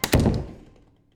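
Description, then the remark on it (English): A door shuts with a single solid thud as someone leaves, a sharp knock-like impact followed by a low, boomy rumble that fades out over about a second. Fairly loud, with no voices. “You know, I actually heard him ask for help as I closed the door.”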